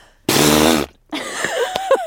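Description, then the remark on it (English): A person blows a loud, buzzing lip raspberry imitating a fart, a strong half-second burst, then after a short pause a longer, rougher sputtering follow-up with wet pops. “I thought that sounded like a really good, that sounded like a great fart impression.”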